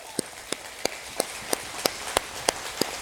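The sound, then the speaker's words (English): A church audience claps together for its online viewers in a steady, even rhythm, about three sharp claps per second, nine in all, over a soft hiss of background noise. “We have our camera mounted, and so can we just give a big hand clap for our online viewers right now?”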